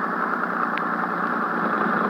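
A boat engine, just started, runs at a steady idle, its continuous droning rumble holding constant for the whole moment, with no voices over it.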